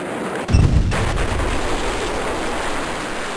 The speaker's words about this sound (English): An hour later, just as shocked onlookers were confident the worst was over, the second and far more powerful blast sent fire and shockwaves tearing through the neighborhoods.